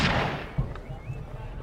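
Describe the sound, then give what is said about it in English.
A single very loud gunshot cracks out at once and rolls away in a long echoing tail, followed by a softer thump and low rumbling as it fades. “After a few minutes, you hear a gunshot, a very loud gunshot.”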